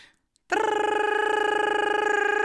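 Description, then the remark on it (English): A voice imitates an alarm going off: after a short silence, a loud, steady-pitched buzzing tone starts abruptly and holds for two seconds with a rapid, fluttering pulse. “And then the alarms start to go”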